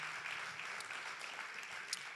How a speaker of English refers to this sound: Could we clap our hands for these guys that are standing right here?